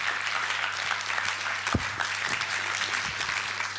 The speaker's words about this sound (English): I'd like to thank Atlanta. I think you've done a marvellous job. Yeah, a round of applause for Atlanta.